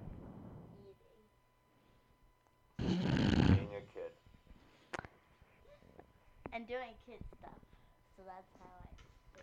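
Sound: snoring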